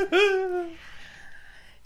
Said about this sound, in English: Gesundheit. Thank you.